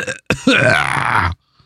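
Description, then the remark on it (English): A voice imitates an old-cartoon ooga horn, like a sad clown horn: a short grunt, then one long, raspy, buzzing honk with a slight upward bend that cuts off abruptly, followed by silence. “If it was just sort of like, like some sad clown horn, like the Ooga horn, but petering out at the end, and then coughing like they would in the old cartoons when they'd honk the horn and they would cough.”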